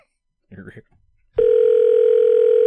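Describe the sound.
A brief bit of speech, then a loud, steady telephone tone starts and holds unbroken, like a line ringing through a phone earpiece as a prank call to a flower shop is placed.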